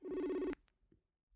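A telephone rings once, a loud, buzzing half-second tone that cuts off abruptly, followed by a faint click and quiet with no one answering.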